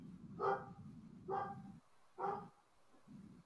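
dogs barking

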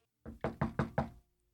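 knock

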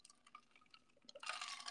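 drink poured

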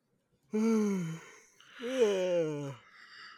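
yawn

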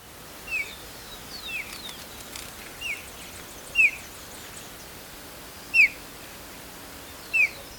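white-tailed kite chirping call

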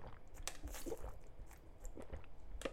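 drinking water

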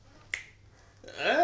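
finger snapping

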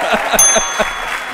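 applause

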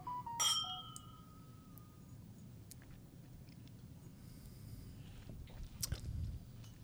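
glasses clinking

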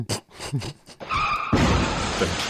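car crash sound effect

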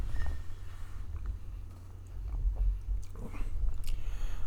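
sipping wine

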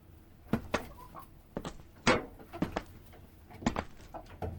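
chickens clucking

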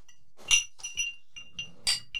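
ice cubes clinking

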